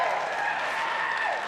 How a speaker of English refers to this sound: And he's adjusting the lights for our new series. Okay, now you can clap for him, right? Okay, yeah.